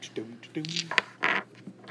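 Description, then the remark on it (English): A deck of playing cards is cut during a card game, with everybody taking a cut: a sharp click and brief papery riffling and scraping bursts, with people talking quietly over it. “You want me to cut? Yeah. Everybody cut.”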